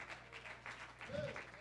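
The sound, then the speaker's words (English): An audience claps their hands in a steady, dense patter that runs throughout, with a brief vocal cry rising over the applause near the end. “Oh, let's clap our hands as if we believe that God has a race for us to win.”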